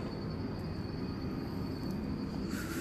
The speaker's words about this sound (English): Another plane is passing. I'll pause.